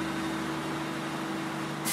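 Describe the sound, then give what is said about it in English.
A train engine starts up and runs with a steady, droning hum and a low tonal whine as air pressure builds, then a sudden sharp hiss of air bursts out right at the end. No one speaks. “The first thing you do, you start the engine up.”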